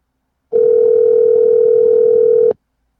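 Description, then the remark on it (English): A single steady ringback tone on an outgoing phone call, one flat mid-pitched electronic burst lasting about two seconds, then it cuts off into silence. No one speaks. “Let's see if they're gonna answer.”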